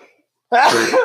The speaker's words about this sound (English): Bless you.